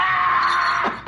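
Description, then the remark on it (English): A man lets out a loud, sustained scream as he is being chopped, holding one strained pitch for about a second before it breaks and drops off abruptly at the end. “I love the weird sound at the end, which is Bond being chopped”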